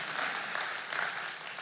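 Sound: audience clapping politely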